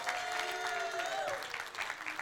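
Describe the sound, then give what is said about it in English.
A church audience claps in a dense, steady wash of applause throughout at the announcement of a fall festival in Uptown Collinsville, with a single high cheer or whoop sliding downward over the clapping partway through. “It is, and by the way, when I say this, everyone's going to start clapping.”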